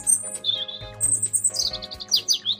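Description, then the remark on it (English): A small red-chested songbird sings a bright, continuous melody of high whistles and quick trilled phrases, clear, over a faint low steady background hum. “He rushed to the lake, but a red-chested bird distracted the murderer with a beautiful song.”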